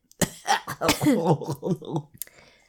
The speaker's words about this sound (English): All right, we're going to end. We're feeling that cough coming back.